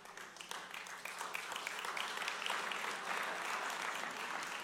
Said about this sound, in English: All in or stay out, no golf claps.